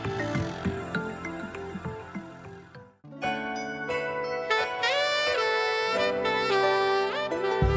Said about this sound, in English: Now the bells of Christmas are ringing again.